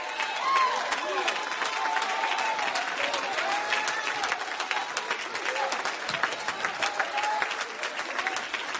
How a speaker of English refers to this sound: I don't know why you worship like you do. I don't know why you sing like you do. I don't know why you clap your hands like you do.